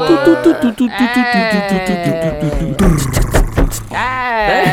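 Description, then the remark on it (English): A voice beatboxes a snare drum with sharp, hissy mouth bursts, mixed in among loud, wavering bleat-like vocal tones. “Oh, my fault. That was my snare.”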